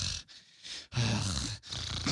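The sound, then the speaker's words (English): A voice imitates the loud, heavy breathing of someone wearing headphones: three rough, forceful breaths in a row, with grunting, snorting edges and brief pauses between them. “People don't know how fucking loud they're breathing when they put headphones on.”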